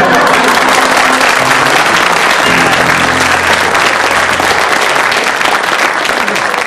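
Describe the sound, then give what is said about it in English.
Loud, sustained audience applause, a dense wash of many hands clapping steadily throughout, with a faint low tonal hum underneath and no one speaking. “you have to agree that they got the greatest applause on Do that one.”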